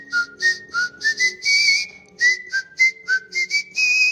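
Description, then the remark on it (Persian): A person whistles the theme tune of the radio program Asraneh alone, without an instrument, a series of short and sustained clear notes stepping up and down in a melodic phrase, steady in loudness. “اینجا میتونم فقط صدای سوتم رو ضبط کنم چون سازی ندارم.”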